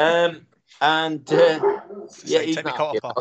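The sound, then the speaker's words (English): A dog barks excitedly in a quick series of loud yaps and yelps, with short pauses between bursts and a mix of higher whiny tones. “My dog's just gone mad.”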